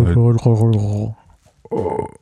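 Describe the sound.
A person fakes a burp with a long, strained, guttural voiced croak lasting about a second, then a brief pause and a shorter, rougher second attempt. It sounds vocal rather than a genuine belch.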